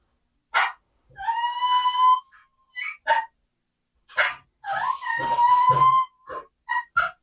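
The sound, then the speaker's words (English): A turkey call plays a squealing whine twice, used in turkey hunting to call a turkey 75 to 80 yards out. Each time a sharp yelp leads into a long, high, wavering squeal and then a few quick chirps, with no voices. “Here's what I call it the squeal of a whine. That turkey's out there 75, 80 yards.”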